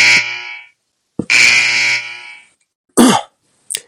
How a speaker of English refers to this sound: Let's do the buzzer here.